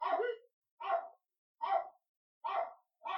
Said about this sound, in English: What a good dog! I was about to say that dog's barking sounds like a person barking.